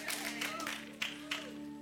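An audience claps in a soft, steady patter of many hands, lasting a couple of seconds with a few slightly sharper bursts, over a constant low electrical hum and no talking.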